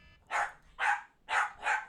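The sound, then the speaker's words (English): The speaker's dog barks four times in quick succession, sharp, with the last two barks coming nearly back to back; no one speaks. “My dog's going to go the nuts, dog too.”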